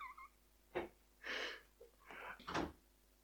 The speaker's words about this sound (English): And there's a door. As I said, we've got to get this place soundproof.